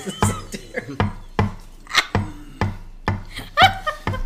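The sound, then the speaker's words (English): A knife repeatedly stabs and cuts into cake, making about nine sharp, moist thuds at a steady rhythm roughly every half second, with faint murmuring in between. “With the sound of a knife, like, there's just a little bit of light cake stabbing in the background.”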